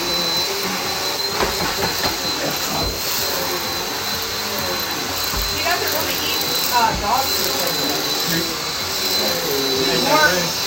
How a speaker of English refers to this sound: So he runs fast. So he's trying to attack the vacuum.